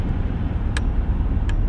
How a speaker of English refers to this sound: Oh my gosh, traffic is horrendous out here this morning.